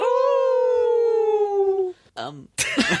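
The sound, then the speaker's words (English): A person imitates a werewolf howl: a long, wavering howl lasting about two seconds, sliding slowly downward in pitch, followed by a brief strained vocal sound and a burst of breathy noise. “The werewolves were howling.”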